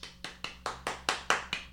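A quick, steady run of about nine hand claps, evenly spaced and crisp, growing slightly louder toward the end, with no voices.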